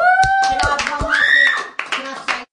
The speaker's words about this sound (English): Let's give a big clap, eh?